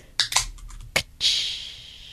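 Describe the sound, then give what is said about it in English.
A can of Forex Gold beer being cracked open: a few small metallic clicks, a sharp snap, then a bright fizzing hiss that slowly fades. No one speaks. “Open a can of Forex Gold.”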